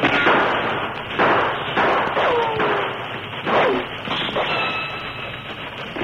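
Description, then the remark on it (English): Several sharp gunshots crack out at irregular intervals, fired by a group of men on a hilltop at an approaching steam locomotive, over a steady, rumbling noise bed, with a few descending whining tones like bullet ricochets between them. “And as the train steamed toward them, they opened fire on the locomotive.”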